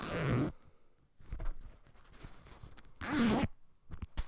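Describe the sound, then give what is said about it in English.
The zipper on the little fabric pouch of a reusable bag is pulled twice in quick, raspy bursts, with quieter rustling and handling of the pouch in between. “It's a bag. It's like one of those reusable bags that comes in a little pouch.”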